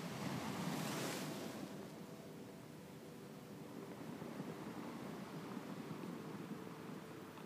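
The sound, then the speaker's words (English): Ocean waves crash onto the shore, a loud burst of surf near the start giving way to a steady, continuous wash of water with a light breath of wind, no voices. “Sounds of the crashing water in your ears.”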